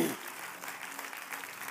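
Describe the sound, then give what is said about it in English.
An audience at an evening worship service claps steadily, a dense wash of many hands striking together with a soft roar of voices underneath, sustained and evenly loud throughout. “Clap your hands to the Lord and give him praise tonight because he's good.”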